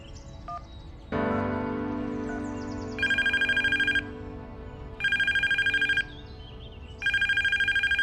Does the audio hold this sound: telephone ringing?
yes